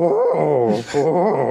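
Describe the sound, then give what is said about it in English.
Someone imitates an owlbear with a loud, wavering, moaning growl that breaks for a brief raspy breath midway, then resumes its sliding pitch. Two sustained vocal bursts, no other speech. “In fact, just give me the sound now so I know what to look for. What does an owlbear sound like?”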